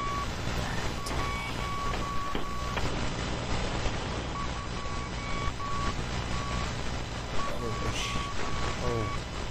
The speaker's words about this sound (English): But that's Morse code. Someone's broadcasting in Morse code.